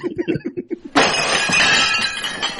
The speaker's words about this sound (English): Yes, there's now broken glass and plates somewhere on the floor right now. I think it's the same sound effect from Groundhog Day when the waiter drops an entire tray of plates.